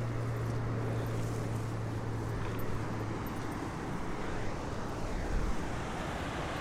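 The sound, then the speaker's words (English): An aeroplane drones overhead during a muddy walk through head-high bracken: a steady low rumble with a broad airy wash that holds evenly throughout, with no voices present. “Aeroplane flying overhead.”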